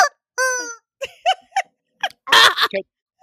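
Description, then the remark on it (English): A pink rubber chicken toy squawks as it is squeezed: one long wheezy squeal, then several short honking squeaks and a loud, raspy blast, with brief gaps between squeezes. “So that's the pink chicken.”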